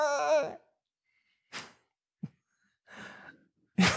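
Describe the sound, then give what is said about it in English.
A person imitates a baby crying: one short, wavering, wailing cry, then a series of breathy gasps and sobbing inhales with pauses between. Fairly loud, with no talking. “That was my baby cry. It was the best I could do.”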